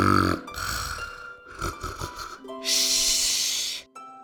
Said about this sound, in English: Within a wink of time, she snores. Loud.